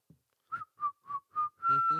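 Someone whistles a short tune up close: four clear, evenly spaced notes, then a longer held note that sounds fuller and slightly breathy, with no talking.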